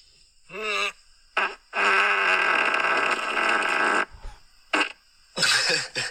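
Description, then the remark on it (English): A loud fart: a short buzzing burst, a brief puff, then a long sustained rasping blast lasting a couple of seconds, followed by a few shorter bursts. “It's like a fart yell.”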